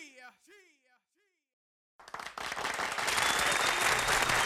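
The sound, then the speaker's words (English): A voice calls out briefly, then after a short pause a loud crowd cheer with applause erupts and swells into a dense, steady roar that holds to the end. “Cheer!”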